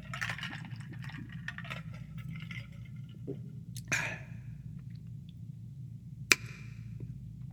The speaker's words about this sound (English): Take a sip break.